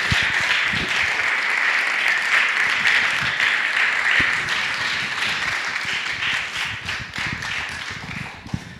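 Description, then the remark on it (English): Sustained applause from an audience welcoming the next storyteller, a dense crackle of many hands clapping at a steady loudness for several seconds before gradually thinning out. “and he's funny, so please clap”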